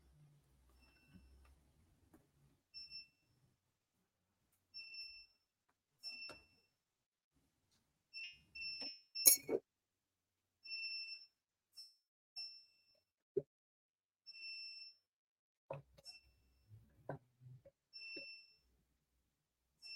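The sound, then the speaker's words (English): A power inverter alarm beeps in short, high electronic tones repeating at a steady interval as mains power comes back on. Scattered clicks and soft handling knocks come between the beeps. No one speaks. “Sorry, they just brought the power and my inverter is signaling me.”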